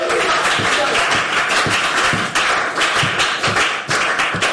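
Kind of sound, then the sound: crowd, audience clapping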